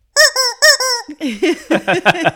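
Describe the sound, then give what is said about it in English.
A rubber chicken toy squeaks loudly: four long, high, wheezing squawks, then a rapid run of shorter honking clucks that rise and fall in pitch. No one talks over it. “she was like, guys, it's just a rubber chicken. But we were like, you don't know the night we've had. Yeah. And it clucks.”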